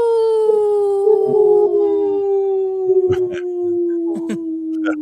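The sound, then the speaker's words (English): A person howls like a wolf in one long, sustained, loud note that slowly slides downward in pitch, with a few soft knocks and clatters in the background. “That was the best howl.”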